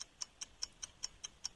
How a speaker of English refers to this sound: Okay, so here we go. I'm going to start the clock. You're on the clock.